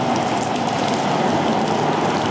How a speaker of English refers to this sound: Yeah, so the funny thing in video games, right? Why is it always raining?